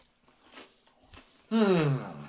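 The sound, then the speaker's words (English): A few crisp, crackly crunches of someone biting and chewing ridged potato chips, quiet and irregular, followed by a loud hummed voice. “They've got a good crunch to them, too, mm-hmm. with that ridge texture.”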